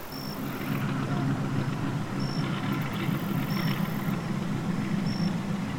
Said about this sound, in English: It was kind of refreshing after a long day of travel, and I actually enjoyed the hum from the 40 horsepower motor in the rear.